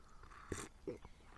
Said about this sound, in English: Right. Quick slurp of tea.